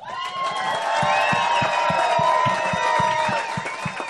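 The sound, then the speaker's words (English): A crowd of Chicago Cubs fans applauds and cheers for former Cubs players in a steady, loud wash of clapping, with high whoops and whistles rising above it throughout. “And we got, let's give an applause to our former Cubs.”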